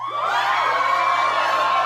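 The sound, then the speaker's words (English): A crowd cheering sound effect: a crowd cheers and whoops loudly, a dense wash of excited voices with rising shouts that holds steady for about two seconds. “I feel like that's how about where we could have used some sound effects there.”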